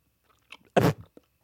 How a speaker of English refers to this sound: I'm chewing a Starburst.